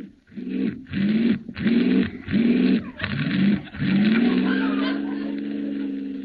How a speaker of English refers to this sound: This car doesn't work very well. Start it again. I'll brace myself.